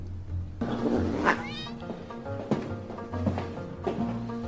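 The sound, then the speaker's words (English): A cat yowls in a string of drawn-out, wavering cries that rise and fall over a few seconds as it is thrown out of a window, fairly loud, with a low steady hum underneath. “Did you just throw my cat out the window?”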